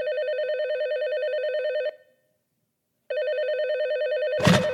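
telephone ringing

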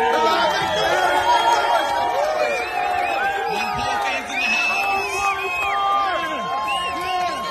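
crowd cheering and whooping

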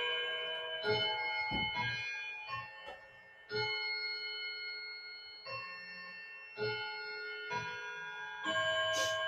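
bell ringing

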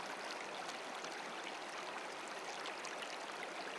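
rushing stream water

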